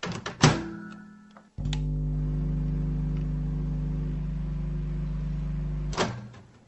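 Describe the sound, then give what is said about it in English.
A door thunks shut, then a microwave oven, run briefly to melt something, hums steadily and loudly for about four seconds before stopping with another clunk. No one speaks. “do you want to put your microwave on?”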